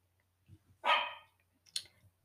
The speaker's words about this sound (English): Y'all hear my dog barking. That's Molly out there.